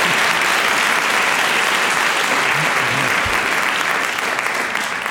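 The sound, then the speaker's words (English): A crowd applauds steadily for about five seconds, a dense, loud wash of many hands clapping at once, holding an even level without a clear ending. “Let's give a round of applause to not BSing us.”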